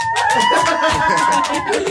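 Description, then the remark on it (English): An audience in a recording studio in Hollywood, California claps in a dense, steady burst of applause for about two seconds, loud throughout, with a sustained higher-pitched whoop or cheer carrying over the clapping. “And our audience members, clap.”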